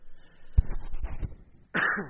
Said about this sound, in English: Apologize for coughing. I still have that lung infection.